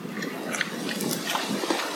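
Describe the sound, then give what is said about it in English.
Two pigs snuffling and grunting in low, rough bursts over a steady noisy background, with a few sharper snorts scattered irregularly through the two seconds and no voices. “But they're two very beautiful pigs that I've watched from very, very, very little pigs to.”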